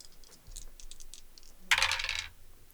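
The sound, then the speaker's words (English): Dice clatter on a table in a 'discern realities' roll: a run of light, scattered clicks, then a brief, louder burst of bright rattling that tumbles for about half a second before settling. “Yeah, I rolled max damage.”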